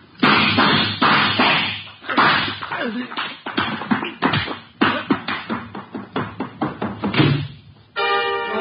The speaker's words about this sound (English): You know, I just like the banging of doors.